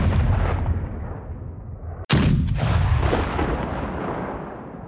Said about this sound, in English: Then, one by one, the lights in all that village went out, and we stood in the cold rain while somewhere a little way off, the rumble of heavy guns shook the ground.